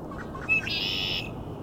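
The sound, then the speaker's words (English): A male red-winged blackbird sings once: a few short introductory notes, then a harsh, buzzy trill lasting about half a second, fairly close and clear over a low outdoor rumble. “Also lots of male red-winged blackbirds, as you can hear.”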